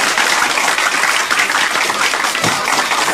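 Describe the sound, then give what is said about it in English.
A crowd applauds steadily, dense overlapping claps forming a continuous loud wash of noise that holds at an even level throughout, with no voices standing out. “Don't give me the claps.”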